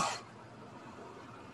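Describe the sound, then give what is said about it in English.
A voice imitates a single short cough, one sharp breathy burst, followed by quiet background noise. “He just lets out that one cough.”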